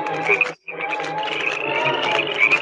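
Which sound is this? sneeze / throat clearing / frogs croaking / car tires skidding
frogs croaking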